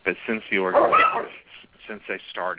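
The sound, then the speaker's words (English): Dogs whimper and yip faintly in the background, with a high whining cry rising briefly near the middle, while a person keeps talking over them. “As you can hear my dogs, sorry about that, there in the background here.”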